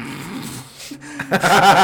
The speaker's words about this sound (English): my girlfriend's mom's little dog. Little baby dog. Oh, my goodness.